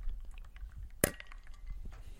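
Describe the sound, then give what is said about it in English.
A single dull metallic knock as two copper Moscow mule mugs bump together in a toast, short, with a faint ringing tail over a quiet background. “Kind of a dull thud. Not much clinking today, folks. That's the copper.”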